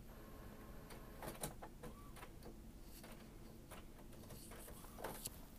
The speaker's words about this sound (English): And so it's a laser office printer with a feeder, scan, fax, and I can't even use it.